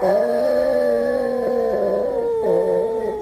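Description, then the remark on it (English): A Boston Terrier howls in a long, sustained wavering tone, loud, the pitch sliding and bending through one continuous drawn-out cry with no talking. “my Ricola dog was at it again”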